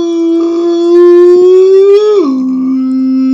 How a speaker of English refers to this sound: Right, the fucking alarms go off. Attention campers, we're about to start the floor show.